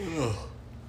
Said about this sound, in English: I'm yawning. I can't be yawning right now.